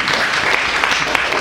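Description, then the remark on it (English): A crowd breaks into steady applause for the more than 125 Students for Justice in Palestine chapters on college campuses, many hands clapping at once in a dense, even patter that holds at a fairly loud level with no voices standing out. “We clap for that, I love SJP.”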